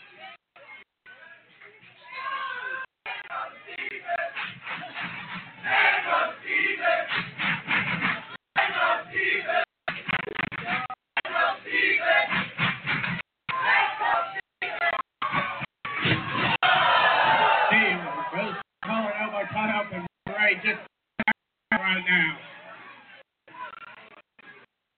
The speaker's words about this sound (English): crowd getting a little impatient with Steve. I'm ready to get this action underway.